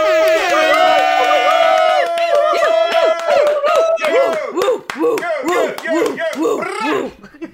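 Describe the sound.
A loud crowd cheers and whoops, many voices overlapping in rising and falling shouts, with sharp scattered claps throughout and a sustained tone at the start before the noise tapers off.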